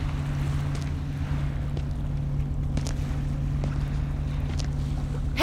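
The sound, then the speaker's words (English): A boat engine drones steadily on the water, a constant low hum with a sustained tonal rumble, mixed with faint wind and occasional small splashes or knocks. “hey, stop the boat. He can't hear you over the engine.”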